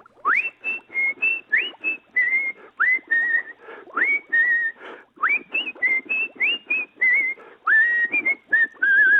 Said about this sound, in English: Hold on, that's not Larry, that's you. Stop whistling, sir. Oh my God. Did you hear that big finish there? He got really high, dragged out that last note there.